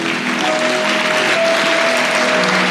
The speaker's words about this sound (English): Can we give a mighty clap to Jesus for his word to us?